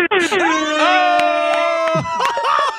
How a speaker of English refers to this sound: He got the air horn on already.